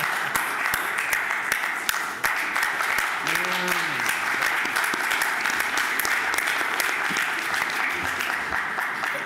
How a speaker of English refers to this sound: And this project is reality, and I think you deserve a round of applause from all of us for what you have done. If not a standing ovation.